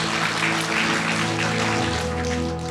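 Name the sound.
audience clapping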